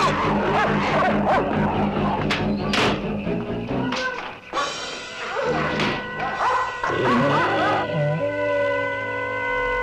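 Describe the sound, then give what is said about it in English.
Dogs bark in scattered, sharp bursts over a loud, busy mix of thumps and sustained ringing tones, the barking overlapping throughout. “Will you be ready for dogs?”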